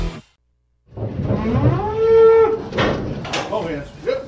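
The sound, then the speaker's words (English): A single drawn-out cow moo swells and fades over a couple of seconds, loud, with muffled farmyard shuffling and knocks around it. “It's that time of year when we're loading trailers and we're hauling cattle.”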